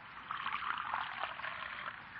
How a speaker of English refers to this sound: Will you pour me some coffee, Marjorie, please? Oh, sure, Unky.